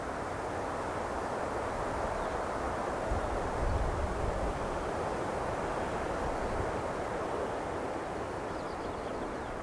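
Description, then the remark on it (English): A steady, hollow rush of wind-like noise, as heard with palms cupped over the ears, fills the whole stretch, broad and unbroken, with a low rumble swelling briefly near the middle. No voices are heard. “But when I am cradling my too tired mind, I hear the sound of wind.”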